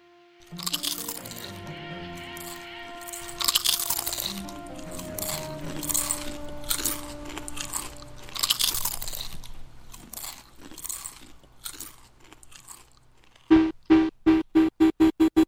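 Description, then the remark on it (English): Loud crunching of chips being chewed, with irregular bursts of crackly bites over several seconds and no talking, followed near the end by a short run of rhythmic pulsing beats. “Speaking of crunch, I'm gonna go back to eating my chips.”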